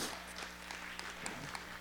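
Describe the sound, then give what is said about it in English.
A short burst of scattered hand clapping from a small audience, clapping for the available seats, fairly steady and moderately quiet, with a faint voice underneath. “Let's clap for chairs. Let's clap for seats.”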